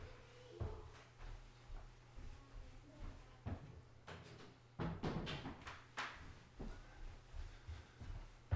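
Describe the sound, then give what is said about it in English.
A series of wooden knocks and thuds as an office door is handled and shut, with clattering bumps over a low steady hum and faint voices. “Had to shut the office door.”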